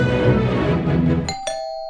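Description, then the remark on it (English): A front doorbell chimes twice in quick succession, bright ringing tones that sustain and ring out after a burst of busy, noisy background sound. “Someone's at my front door. Give me a second.”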